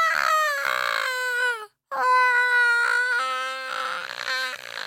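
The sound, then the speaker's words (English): A voice imitates howling imps: loud, high, wavering wails that slide up and down in pitch, one long howl, a brief pause, then a second sustained, quivering howl. “At this sound, the fiddle slash violin, Mary threw the box into the fire and the sound of howling imps filled the room.”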